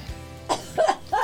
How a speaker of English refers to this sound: Oh, my. It's a great day to cough.